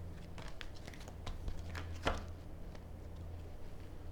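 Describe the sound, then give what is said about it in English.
A clarifying tarot card is slid out of a deck during a tarot reading: soft papery rustles and small crinkly clicks, with one sharper snap midway, over a low steady hum. No one speaks. “I'm going to pull a clarifying card for that.”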